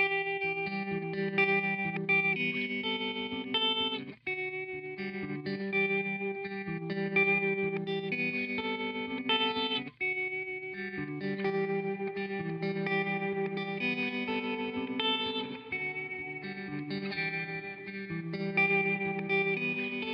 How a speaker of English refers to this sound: I want to have the tremolo on first to give you that isolated, then I'm going to initiate the reverb, and you just hear how incredibly lush this sounds